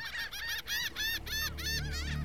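A lone seagull cries out in a quick series of five or six harsh, nasal squawks, clear, over a low rumbling background that swells toward the end; at Alcatraz Penitentiary, by the rocks at the water's edge, after the wind stopped.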